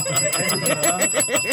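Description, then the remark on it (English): A bright bell rings rapidly and repeatedly, a fast metallic trill with regular strikes, loud, heard on its own with no talking. “Ring the bell.”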